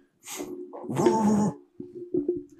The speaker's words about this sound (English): Random dog out of nowhere.